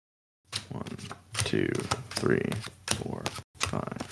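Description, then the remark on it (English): Six playing cards are discarded off the top of a deck during a card game, a quick series of crisp snaps and flicks, with a brief murmur of a voice partway through. “So discard 6 from the top of the deck.”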